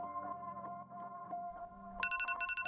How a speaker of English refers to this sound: It's 6:30 a.m. and the day is finally here. I reach for my phone and turn off that damn alarm.